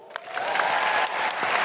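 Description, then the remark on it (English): An audience at Hamer Hall in Melbourne claps in a dense, steady round of applause, many overlapping hand claps forming a continuous crackling wash at an even, fairly loud level throughout. “And before we close, I just want to say a huge round of applause to everyone here at Hamer Hall.”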